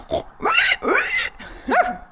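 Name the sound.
voice imitating pig oinking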